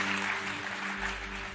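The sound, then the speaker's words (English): Light, scattered applause from a small audience, four people clapping steadily over a low electrical hum, with no talking. “Okay, I got four claps.”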